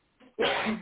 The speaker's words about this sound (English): bless you. Thank you.